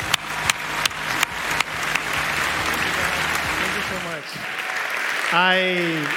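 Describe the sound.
Sustained applause from a large audience fills the space, dense steady clapping with a few sharper claps early on, and a voice rising in a cheer near the end.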